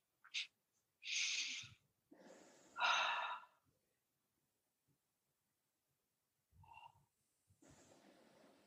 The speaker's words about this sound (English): Let's open with some breathing, inhales and exhales, and then the serenity prayer.